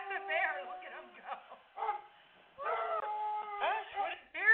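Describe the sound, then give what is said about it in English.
A coonhound bays in a series of loud, drawn-out bawls with wavering, sliding pitch, several howling calls in quick succession with short gaps between them. “Yeah, that's a real dog. That's a coonhound.”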